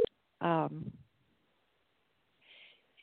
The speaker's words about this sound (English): He's pushing the doorbell, coming on in.